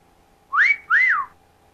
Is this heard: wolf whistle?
yes